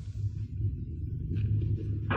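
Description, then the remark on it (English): A deep, continuous rumble of a cattle stampede headed for Soda Spring rolls steadily throughout, with faint scattered bursts of gunshots in the middle and a brighter burst of noise at the very end. “That's not thunder, partner. That's cattle on the move.”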